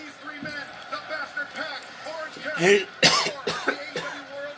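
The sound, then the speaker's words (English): A person clears their throat and coughs a couple of times, sharp harsh bursts following a stretch of voiced, speech-like sounds. “I need a cough button, but...”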